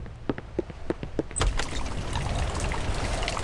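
Scattered drips and taps give way, about a second and a half in, to a dense, steady downpour of rain, loud and continuous, with no voices.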